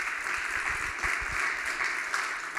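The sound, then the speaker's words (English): A church audience claps steadily for its worship leaders, a dense wash of many hands with no single beats standing out, holding at an even moderate loudness throughout with no voices over it. “And can we give them a round of applause too?”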